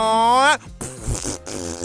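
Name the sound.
fart sound effect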